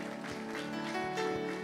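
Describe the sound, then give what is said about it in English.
An audience at Grace Church claps their hands to Jesus in the morning, a steady, dense wash of hands, with sustained music tones running underneath the whole time. “If you're happy to be in the house of the Lord this morning, why don't you just clap your hands to Jesus?”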